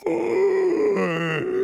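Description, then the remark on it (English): A pig named Mercy gives a long, drawn-out yawn, voiced and groaning, with a wavering pitch that dips in the middle before rising again. It is fairly loud, and no one speaks. “Mercy yawned.”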